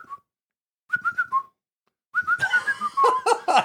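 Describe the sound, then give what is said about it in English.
Someone whistles in short bursts to call an Italian street dog: a brief note, then a quick run of chirpy whistles, and finally a longer wavering series of whistled notes mixed with breathy noise. “We got the whistles today.”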